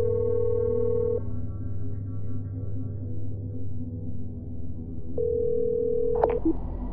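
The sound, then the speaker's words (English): A telephone ringing tone sounds twice through a handset, each steady buzz lasting about a second with a long pause between, over a low hum, then cut off by a click as the line picks up. “You reached my phone, but you haven't reached me.”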